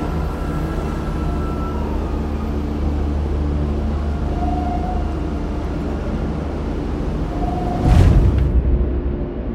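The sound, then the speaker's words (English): A continuous low rumble of a crowded subway train in motion, with steady rattling, faint squealing tones, and a brief louder clatter near the end as the car jolts along. “Tanya took a deep breath as they stepped onto the subway car.”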